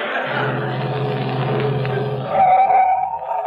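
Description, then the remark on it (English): A delivery truck engine rumbles steadily, then the motor note drops and a brief high brake squeal sounds as the vehicle pulls up and stops, its idle continuing quietly. “I'm going past your house. You want a lift to my delivery truck?”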